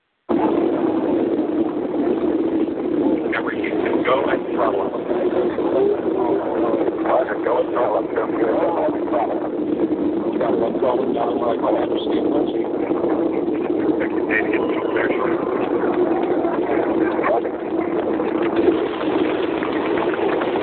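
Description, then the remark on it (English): A steady, loud roar of the space shuttle Discovery's main rocket engines rumbles continuously during ascent, after solid rocket booster separation, as the main engine nozzles swivel to aim the shuttle, with muffled radio-style voices talking over the noise. “Discovery's onboard computers commanding the main engine nozzles to swivel, aiming the shuttle for its precise target in space for main engine cutoff.”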